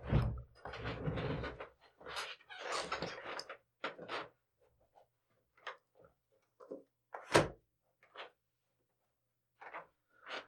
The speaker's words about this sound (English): Forgot to close the window. I imagine that's one of those sound things that sounds exactly what it sounds like. Like that sounded exactly like a guy getting up from a rolly chair on a hard floor and closing a window.